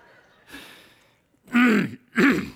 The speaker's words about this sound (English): Lord, help me. I don't want to have to clear my throat up here the whole time I'm preaching.